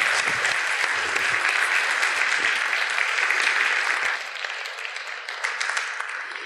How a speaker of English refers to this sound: And before I talk about them, give these folks another warm round of applause. Thank you guys so much.